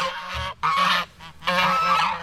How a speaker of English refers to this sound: If you said geese, you got it right.